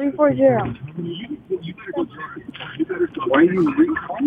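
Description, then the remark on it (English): Muffled, narrow-band talk from a caller comes through a phone line while the caller's radio plays steadily in the background, its voices overlapping and blurring together. “…, in the car? …, I need you to turn down the radio.”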